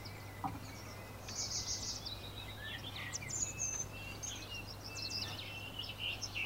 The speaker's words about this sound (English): Nice, we can hear the birds down here. There's a nest or something.